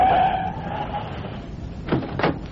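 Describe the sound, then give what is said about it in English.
A taxi brakes to a stop in The Green Hornet drama, a thin squeal fading over a low engine rumble, followed by two quick clunks near the end. “Okay, cabbie, hit those brakes.”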